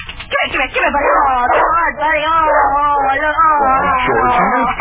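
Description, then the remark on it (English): A dog named Bunny whines and yips at the back door on returning home after a storm, loud and almost continuous for about five seconds, its high wavering cries rising and falling with short bark-like bursts mixed in. “Now, where in the world could that dog have been during that storm?”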